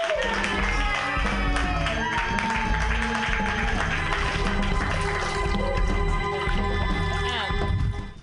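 An audience applauds steadily for about eight seconds, a dense, even wash of clapping with cheers and some tonal sounds mixed in, cutting off abruptly at the end.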